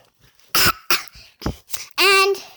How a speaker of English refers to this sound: when he woke up, he was a little bit sick. He had a little bit of a cold. Cough.